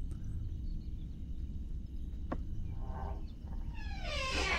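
door opening or closing

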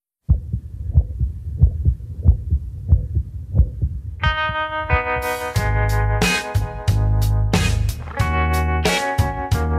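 human heartbeat

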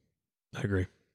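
yawn

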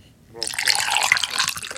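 drinking water

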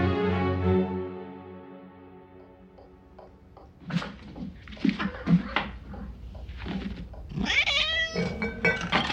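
cat meowing

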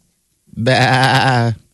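goat bleating

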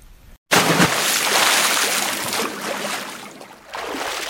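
water splashing

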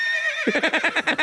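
horse neighing

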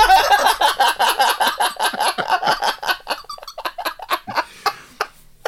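bird calling

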